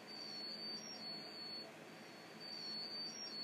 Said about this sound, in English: Oh, we got alarms going off in the studio, that's all right. We're all fine, it's all good.